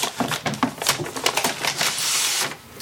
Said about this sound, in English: Right now I'm loading paper into my printer, so if you hear something interesting... Ow! Paper cut. That's what's going on.